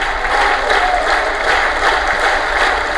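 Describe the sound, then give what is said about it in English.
Steady, dense applause from many hands, a continuous crackling wash of claps at an even loudness throughout, with no voices. “Yeah, clap, clap, clap.”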